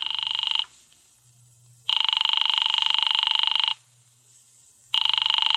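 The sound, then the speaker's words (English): A telephone call to an office rings in loud, sustained bursts with pauses between them, going unanswered; the buzzing ring repeats about three times with a faint low hum underneath. “His office don't answer. Give me that phone.”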